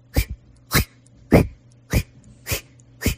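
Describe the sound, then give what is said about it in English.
Someone imitates a sleeping noise that resembles an old sprinkler: six breathy, hissing bursts in a steady rhythm, each a sharp puff of air with no talking between them. “It sounds like one of those old school sprinklers on a golf course.”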